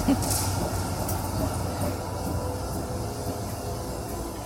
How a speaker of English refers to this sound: Okay, you're at our sub-level. Down here you can get our underground tram.